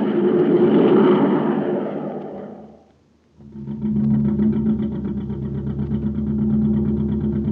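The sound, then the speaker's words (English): A surface car, running on ordinary fuel on the way to Terra City, runs loudly, its engine roar swelling and then dropping away briefly before settling into a steady, throbbing drone as if cruising along. No one speaks. “Say, what kind of jet jalopy are we riding in, Captain Tufeld?”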